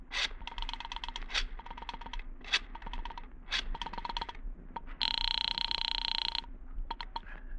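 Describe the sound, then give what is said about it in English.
Rapid clicking bursts of a phone being dialed to call the Versailles Apartments, then a single loud, sustained ring that cuts off, followed by a few faint clicks. No voices. “You quickly reach for the phone.”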